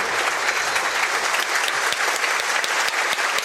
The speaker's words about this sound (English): Big picture of Bill Turnbull on the big screen here at Adams Park. And it's rapturous applause from all four sides of the ground here at Adams Park. Plymouth fans playing their part too.